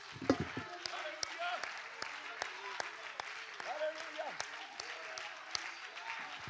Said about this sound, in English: Let's clap our hands and shout unto the Lord right now.